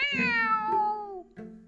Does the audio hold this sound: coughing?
no